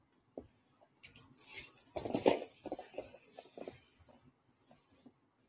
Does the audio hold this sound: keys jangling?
yes